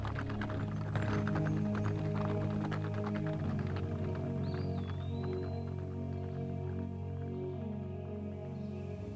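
Horses' hooves clip-clop in a quick, busy patter over a steady low musical drone as the horses are taken back to camp, the hoofbeats thinning out as they move off.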